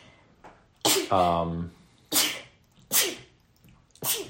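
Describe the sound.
Four loud, sharp sneezes come in quick succession, each a bright burst of breathy noise, with a short voiced sound between the first two.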